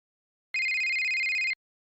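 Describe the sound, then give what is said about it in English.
A single electronic telephone ring, a bright, steady warbling tone lasting about a second, loud, in the style of an old 1980s phone, then silence. “I like how your phone is an 80s ring.”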